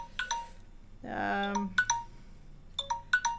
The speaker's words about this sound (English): Oh, my phone is ringing. 1 second, don't go away, folks. This can't possibly be somebody calling the show, but it might be. Oh, it's my phone.